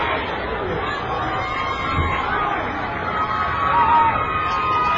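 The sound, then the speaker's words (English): A large football stadium crowd roars and cheers steadily after Matt Burnett's extra-point kick is good, making it 21-7, a dense wash of voices with a few whistles rising above the din, swelling slightly toward the end. “And a crowd that was in definite need of some CPR comes to life finally.”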